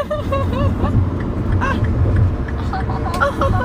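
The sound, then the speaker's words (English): A truck's heavy engine rumbles steadily, its low drone filling the background while a person talks over it. “That truck's scary. I don't like it.”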